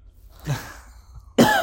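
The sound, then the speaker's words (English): A woman coughs twice: a softer, short cough first, then a louder, harsh burst about a second later, with no talking. “Now she will cough.”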